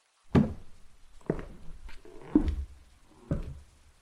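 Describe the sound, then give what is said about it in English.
Four soft, evenly spaced footsteps of a girl padding lightly into a hallway on a wooden floor, each a dull muted thud about a second apart, quiet with no voices. “She pads quietly into the hallway as lightly as possible, so as to not creak the wooden floor.”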